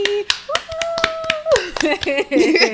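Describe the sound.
A small group claps in loose, uneven bursts for about three seconds, sharp slaps ringing out as voices whoop and chatter over the applause.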